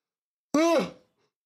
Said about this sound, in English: Oh my God, yawning. It's tired time.